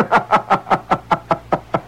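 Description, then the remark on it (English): Someone raps on a door in a quick, steady series of about nine evenly spaced knocks, fairly loud, with no voices. “So I'm knocking the door.”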